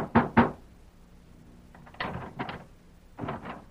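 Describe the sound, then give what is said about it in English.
Heavy fist blows pound on a wooden door in a few irregular bursts: a quick double thump, then more scattered hits after a pause, loud with no voices. “Open up. Open this door, do you hear me?”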